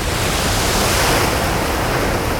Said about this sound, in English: Water rushed inside like the drain of a bath. I would be pulled in. There was no escape.